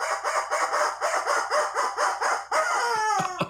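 rubber chicken toy squawking

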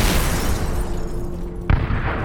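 sound effect, explosion boom

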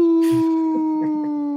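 animal, dog howling

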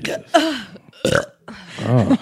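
human body sound, loud burp

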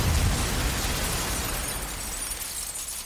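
sound effect, explosion

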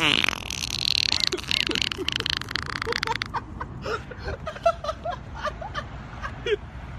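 human body sound, farting

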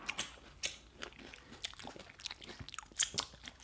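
food or drink, biting and chewing food

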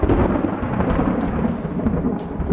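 nature, thunder crack

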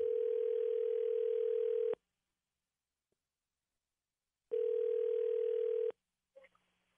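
signal or alarm, telephone call ringing out

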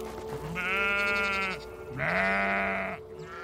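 animal, sheep bleating

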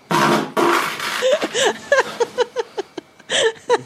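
human body sound, fart

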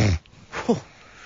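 human body sound, person snoring

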